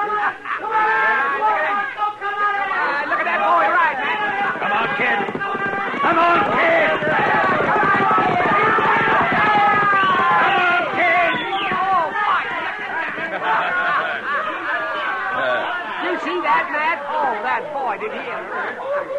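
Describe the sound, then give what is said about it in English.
A dense crowd chatters and shouts loudly and continuously during a race between a quarter horse colt and a thoroughbred, a low rumble of galloping hooves buried beneath the babble of voices. “I've never seen two different breed of horses run against each other.”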